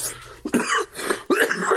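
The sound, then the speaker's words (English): A person clears their throat in two rough, raspy bursts, the second following shortly after the first, with no talking around them. “No, I had to clear my throat real quick.”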